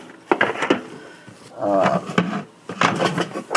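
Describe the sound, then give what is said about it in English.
A pull-cord food chopper, its cover holding a built-in spring mechanism and pull like a motorboat starter, being yanked several times, each pull giving a quick ratcheting whir with clattering bursts; one longer, buzzing pull sits in the middle, fairly loud, with no talking. “Just basically it's a chopper with a cover. The cover has a built-in spring mechanism and a pull, like a starter on a motorboat.”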